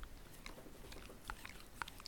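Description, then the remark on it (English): Wet licking sounds from a dog sitting on a person's lap, a rapid series of small smacks and slurps with a few sharper clicks, quiet and steady over about two seconds with no talking. “That's his way of communicating is in licks.”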